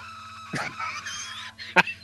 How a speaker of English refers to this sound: That scream. One of the greatest screams in cinema history. Just fundamentally bothered.